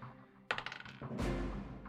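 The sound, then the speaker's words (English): Dice rattle onto a hard surface during a tabletop role-playing game, landing on a 15, in a quick burst of small clicks that tumble and fade, followed by a duller rolling clatter as they settle. “I got a fucking 15 on the dice.”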